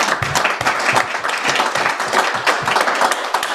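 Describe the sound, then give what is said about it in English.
A crowd applauds steadily for several seconds, a dense patter of many hands clapping at a fairly loud, even level with no voices on top. “but give him an actual round of applause.”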